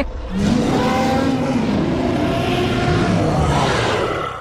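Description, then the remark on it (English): A loud, sustained dragon roar fills the whole stretch, deep and growling with a rough, rising tone, intense like a huge creature bellowing without pause. “Like, intense dragon roaring.”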